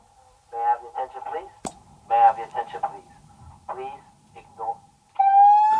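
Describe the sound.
A building fire alarm sounds. A thin steady electronic tone hums beneath muffled voices, then a loud harsh alarm blares near the end.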